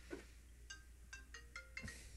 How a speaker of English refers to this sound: We can strike that from the That record. Was my phone ringing.